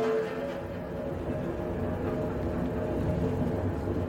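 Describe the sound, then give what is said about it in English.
A westbound train rolls past on the rails, producing a steady, dense low rumble with a faint clattering texture that holds an even loudness for about four seconds. “Is that a westbound train, I hear?”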